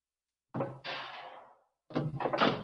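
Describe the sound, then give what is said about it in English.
A door swings open with a thump and a fading rush, followed after a short pause by a cluster of clattering knocks as a folding Murphy bed behind the door is pulled down, fairly loud. “so there's a folding bed behind this door.”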